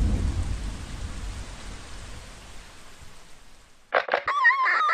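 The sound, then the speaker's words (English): Heavy monsoon rain in Jogja hisses steadily with a deep rumble of thunder underneath, both gradually easing off before a sudden warbling tonal sound cuts in near the end. “at the moment I'm a little bit stranded in my own dark house by this monsoon rain.”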